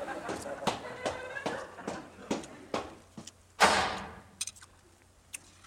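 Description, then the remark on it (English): A series of sharp, evenly spaced clicks like approaching steps, then a front door swings open with a sudden broad rush of sound that fades, followed by a few faint knocks. “The front door opens.”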